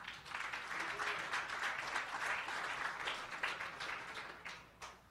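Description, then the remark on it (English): A crowd applauds for the first panel of a session on the Texas investor environment, with dense, steady clapping that holds for several seconds, then thins out and fades near the end. “So I always like to give my panelists some energy, so if we can please give a big round of applause to our first panel today.”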